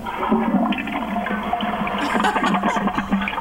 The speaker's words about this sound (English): Thank you, Mark, for the great sound effects. That's right. Flush her.